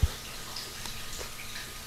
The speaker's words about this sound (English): Are you taking a shower? No, I wish. Are you near a fountain? There's some pipes around here. You might want to check them. Sounds like there's some drizzle in your background.